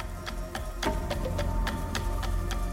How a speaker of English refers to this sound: Those scenes are also defined by percussion, but it's a more naturalistic kind of percussion. Wooden tubes and rain sticks, the sound of the kinds of instruments fashioned out of wood and repurposed plastic rather than salvage metal.